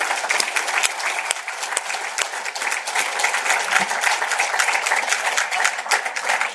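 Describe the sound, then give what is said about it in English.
A crowd claps steadily throughout for former Majority Leader Art Turner, a dense, sustained wash of many hands applauding with no speech over it. “Give him a round of applause, too.”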